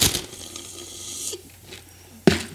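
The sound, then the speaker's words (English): A loud, airy slurp from the bottom of a cup: a sustained hissing suck with a few wet gurgles, ending in one sharp final slurp. No one speaks. “Could you give us one good slurp so we can get some clean audio”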